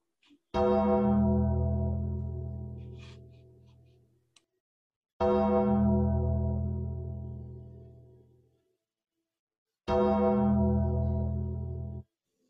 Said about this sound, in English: So I guess, let me, we'll have a moment of silence for Flash. Okay. We'll do 10 ringings of the bell. Okay. So a moment of silence.